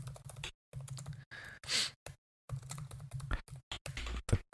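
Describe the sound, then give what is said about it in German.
Typing on a computer keyboard: quick, uneven bursts of key clicks with short pauses, plus a soft breathy rush partway through. No one speaks. “Es ist Donnerstagabend und wir sitzen vor dem Computer und tippen.”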